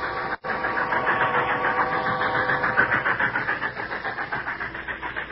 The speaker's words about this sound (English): They heard the distant sound of a passing train and paused.